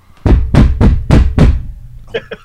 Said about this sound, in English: I'll be right back. Someone's banging on my door. Hold on.